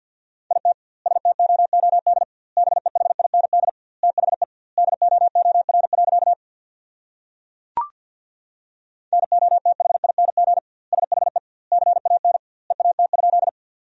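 Morse code sent very fast at 50 words per minute with doubled word spacing, sending sentences made from the top 500 words: a steady mid-pitched beep keyed into rapid bursts, with a long pause and a single click midway, then more quick groups.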